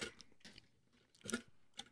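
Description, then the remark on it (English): Soft, wet chewing of a California Reaper flavored jelly bean, with several moist smacking and squishing bursts spaced irregularly over a couple of seconds, one slightly louder smack near the end, no talking. “You know, people just want to hear us eat.”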